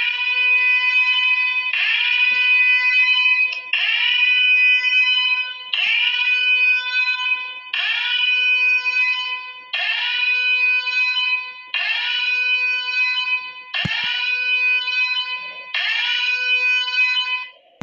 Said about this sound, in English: This damn escape alarm is getting on my goddamn nerves.